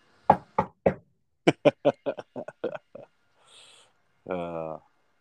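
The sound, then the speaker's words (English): Crisp knocking on wood: three spaced raps, then a quick run of about nine lighter knocks, followed by a brief soft hiss and a short voiced chuckle. “You better knock on some wood.”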